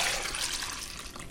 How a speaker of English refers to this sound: What I have left is a lovely bowl of warm, fragrant, infused milk, and I'm going to pour that into a bowl because I'm going to use that now to make the sauce.